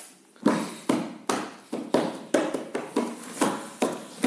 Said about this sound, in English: Stop tapping it. This is annoying. This syncopation.